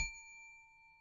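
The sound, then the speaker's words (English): A single bright bell ding rings out clearly, its sharp strike fading into a long, steady metallic tone that lingers for about a second. “To help me control my rowdy panel of recidivists and reprobates, I will employ what I have called the inappropriate bell.”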